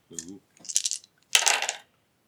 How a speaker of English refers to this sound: You've rolled four dice. I've rolled four dice three times and I've had five successes.